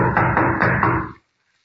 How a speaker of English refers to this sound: Pounding on the door isn't going to do any good either. Whoever's in there evidently doesn't want callers today.